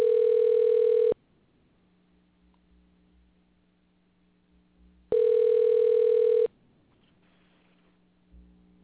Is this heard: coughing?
no